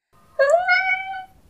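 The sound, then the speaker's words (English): A single high-pitched meow from a little lost kitten in a garden, clear, lasting just under a second with a slight downward drawl at the end, heard alone with no talking. “After looking around for a while, Joey and Yana finally noticed that the meows were coming from the 2 green eyes.”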